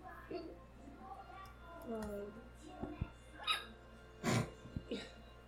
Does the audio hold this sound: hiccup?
yes